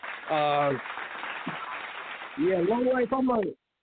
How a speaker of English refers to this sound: We're going to take you out with some claps.